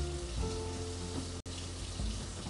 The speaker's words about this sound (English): So I'm gonna turn the water on, and I still have my strainer in the sink from when I did my spaghetti.